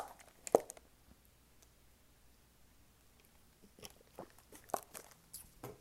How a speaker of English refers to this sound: I got to get a swig of Gatorade. Hang on.